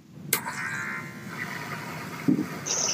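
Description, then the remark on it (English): Electric hair clippers buzz steadily and continuously at moderate volume as a man's head is buzzed, with a couple of brief clicks or bumps breaking through the hum. No one speaks. “He's going to buzz his head.”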